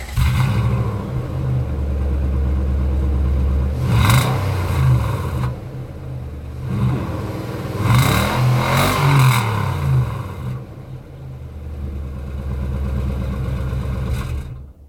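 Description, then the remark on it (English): A truck engine idles with a low rumble, revs up in a couple of loud bursts with rattling, settles back to a steady idle, then the ignition is switched off. No one speaks. “Oh, but okay, so it's definitely a truck because of the rattles right there.”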